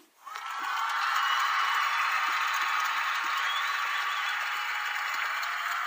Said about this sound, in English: So, a round of applause to tell us if we should shut up or not and call it a night.